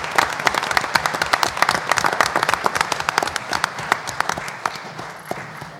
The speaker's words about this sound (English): Let's have a round of applause for these academic all-conference students.